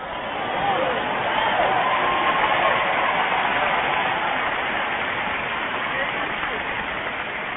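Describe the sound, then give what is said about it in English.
A church audience claps steadily during a sermon, a dense, rain-like wash of many hands that holds at an even loudness throughout, with a few voices mixed into the applause. “Oh, you clap your hands now.”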